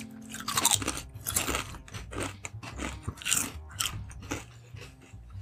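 Salt and vinegar potato chips being crunched and chewed, a string of sharp, crackly bites at an uneven chewing rhythm over a low steady hum, with no talking.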